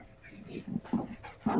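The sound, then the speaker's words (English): A dog makes a few short, excited yips and whimpers in quick succession, moderately loud, with no one talking, while a handler works the dog in a training session. “works the dog.”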